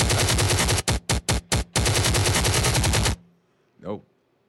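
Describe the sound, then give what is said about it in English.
A loud, continuous burst of rapid machine gun fire, broken by a few short gaps, stops abruptly, followed by a brief fading swoosh. “Let that chopper ring!”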